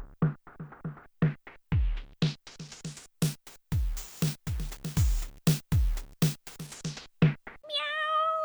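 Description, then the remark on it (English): A rapid run of sharp, punchy percussive hits, then one drawn-out, clear meow at the very end, fairly close and loud. “Meow!”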